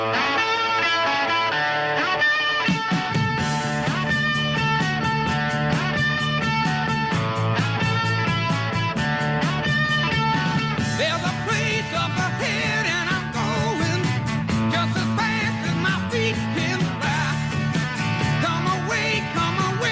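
A rock song plays at full volume, led by a bright, driving electric guitar riff over a steady, pounding drum beat and bass, with the band kicking in fully after a brief intro.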